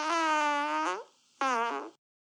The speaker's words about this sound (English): do you have a fart-making app, or is that your real diseased asshole? That is my real... These are fresh. Wow. They're pasteurized, if you know what I mean.